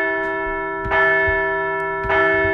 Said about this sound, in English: and then after an opening walk, Johan Rojas single up the middle, and that sent Christian Pache into home and sent the Phils into the playoffs. Let's ring that bell one more time.